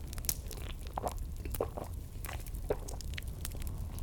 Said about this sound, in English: Now, pause as I take a little sip of my bevy just to wet my whistle for today's reading.